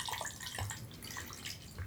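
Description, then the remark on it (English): Gin pours steadily into a glass for a couple of seconds, a soft continuous splashing trickle with no talking. “Now we're pouring gin, and that means I need to grab one of these big wedges of lime.”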